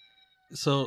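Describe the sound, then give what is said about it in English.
A recording of the Siren Head siren sound: a faint, steady multi-tone drone gives way to a sudden loud, distorted wail, a harsh voice-like siren blare with a hissing edge that swells over the second half. “So when I first heard this, it was that it was considered to be a broken siren.”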